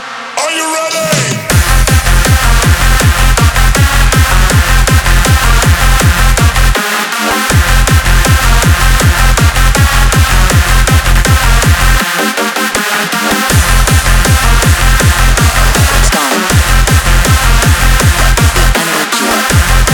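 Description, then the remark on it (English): Loud, driving hard dance music with a relentless pounding four-on-the-floor kick, dense bright synths filling the top end, and a few brief breaks where the bass drops out before slamming back in. “that it was going to be a power track.”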